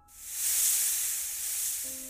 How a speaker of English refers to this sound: Typhon laughs, and the abominations, all perched in wait around us, echo the sound with a series of hisses.